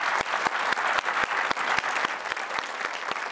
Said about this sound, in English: A round of applause for our people.